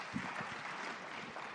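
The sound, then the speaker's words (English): A short burst of audience applause, dense and steady clapping from a crowd that fills the whole moment at a moderate level. “Yeah, give them a round of applause.”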